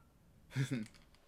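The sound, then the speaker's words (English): A cat named Squeezer gives a brief two-part meow, a quick tonal rise and fall lasting under half a second, heard alone against a quiet background. “Squeezer says Gesundheit.”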